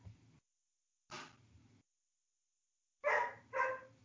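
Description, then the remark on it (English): A pet dog barks twice in quick succession, loud, after a short stretch of quieter noise and silence. No one is talking. “My dog doesn't agree.”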